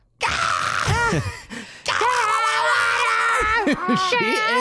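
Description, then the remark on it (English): A woman playing a panicked lifeguard screams at the top of her lungs, loud, her strained voice wavering in pitch through two long outbursts separated by a brief gasp-like pause. “All of their lifeguard training goes out the window and Jill is screaming at the top of her lungs.”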